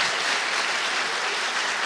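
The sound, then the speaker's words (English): An audience applauds, a dense, steady wash of many hands clapping at once, loud and unbroken for the whole moment with no voices over it. “I don't think you've been, you haven't given a good round of applause yet.”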